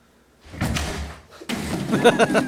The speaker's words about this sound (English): Or it's just Big Bird kicking down the door.